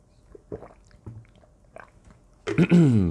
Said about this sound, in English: Let me take a swig of my water here.